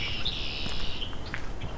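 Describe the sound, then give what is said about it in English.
A Carolina wren sings a bright, rapid rolling phrase that lasts about a second, with a few faint chirps after it against a steady outdoor background hum, in a partially flooded forest of hardwood and mixed deciduous trees. “The Carolina wren.”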